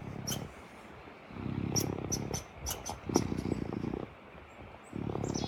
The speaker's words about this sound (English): You're not listening to a cat right now. You are listening to a raccoon. They purr. I didn't know that. Raccoons can purr. Look. He's a happy boy.